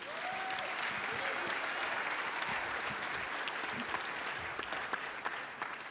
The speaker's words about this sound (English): And what better example could we have of that than our leader and his family showing the way? That's an applause line right there, don't you think?